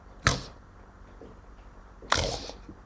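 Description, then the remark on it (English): A female dog named Millie, sleeping at the speaker's feet, gives two short, harsh snorts, roughly two seconds apart, each a sudden noisy burst of breath with a rough, pig-like grunting quality over a quiet background. “Millie, stop snorting. You hear the dog? She sounds like a pig.”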